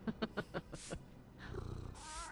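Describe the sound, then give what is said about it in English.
A ship's hold cat makes a few quick chirping, trilling sounds, then settles into a steady rumbling purr that continues to the end, with no voices present. “What's this flea-ridden beast? It must be the hold cat.”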